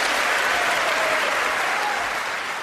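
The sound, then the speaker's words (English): A large audience, Republicans, applauds steadily, a dense wash of clapping with some cheering mixed in, sustained at a constant loud level throughout without any voice speaking over it. “See, but of course, the Democrats weren't the ones cheering. Those are Republicans.”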